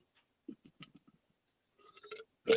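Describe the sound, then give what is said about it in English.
A quick series of soft, low gulps as someone swallows water, followed by a breathy exhale and a louder thump at the end, with no talking. “All right, sorry if you can hear my water, I apologize.”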